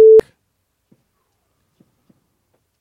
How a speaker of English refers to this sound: So go ahead and mark down the time because you're going to have to beep that out. We can't let that go out.